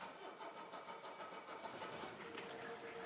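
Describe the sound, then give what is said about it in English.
An old wagon's engine cranks in a garage and catches on the first try, then settles into a steady, rough mid-pitched running rumble with a constant loud mechanical whir and no voices. “I'm going to turn it on for you so you can hear it.”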